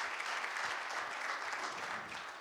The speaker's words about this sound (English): Give our assistant a great round of applause.